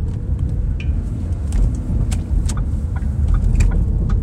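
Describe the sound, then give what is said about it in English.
A car's engine hums low and steady as the vehicle rolls slowly into a Barnes & Noble parking lot, with a few faint, scattered clicks and taps over the continuous rumble. No one speaks. “Honestly, what I'm gonna do is I'm gonna tell y'all I'm getting to the parking lot right now. here at Barnes & Noble.”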